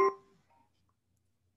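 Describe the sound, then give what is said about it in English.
A phone gives a short electronic chime: a bright tonal ping that rings out and fades within a fraction of a second, followed by a faint second blip, with no talking. “I believe her phone just made a noise.”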